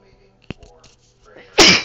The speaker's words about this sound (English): I'm going to sneeze.